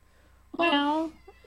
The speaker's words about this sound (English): Are you hearing my little cat? I am. Which one is that? I only have one cat, Schmidt.